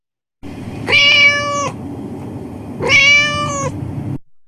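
Two loud, drawn-out cat meows, each about a second long with a rising-falling tone, separated by a short pause over a low background hum. No one speaks.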